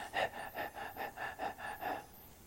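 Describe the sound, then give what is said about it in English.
A person demonstrates rapid, shallow breathing: about eight quick, airy breaths in an even rhythm over a couple of seconds, fairly soft, with no talking. “I think that way of breathing, I've come to find, is increasingly shallow. I mean the kind that's like this.”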